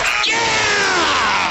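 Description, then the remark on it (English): A huge Ball Arena crowd erupts in loud, continuous cheering and screaming after Aaron Gordon's game-winning shot, a dense roar with a sustained tone sliding slowly downward over it for the full second and a half. “Aaron Gordon puts the Ball Arena crowd into a frenzy.”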